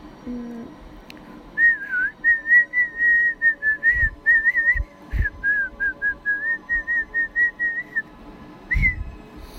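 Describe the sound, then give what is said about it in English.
A person whistles a steady run of short, evenly pulsed notes, the tone wavering slightly, with a few soft thumps and breaths in the background. “Yeah, that was my best attempt. I actually tried, so yeah, I can whistle.”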